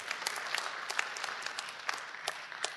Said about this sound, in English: Come on, I think that's something you could clap about this morning.